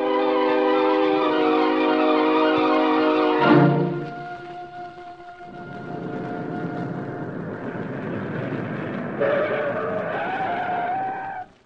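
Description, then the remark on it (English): A car engine roars with a high, squealing whine of tires, a short jolt midway, then rumbling on and screeching again before cutting off as the car stops in front of Barlow Murray's home. No one speaks. “Meantime, a car stopped in front of Barlow Murray's home.”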